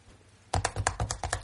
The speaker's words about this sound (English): That's my calculator. From the 1930s? Yeah. Ching. That's a... That's what the lever sounds like, and now it's printing out.